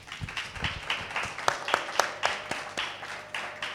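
An audience applauds to welcome a guest speaker invited up to join, with a steady run of crisp, evenly spaced claps at moderate loudness, sustained for several seconds with no one speaking over it.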